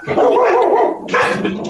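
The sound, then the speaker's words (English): Household dogs bark loudly at home, two sustained bursts of barking with a brief dip between them, sounding excited and a little whiny. “There's just a dog barking somewhere”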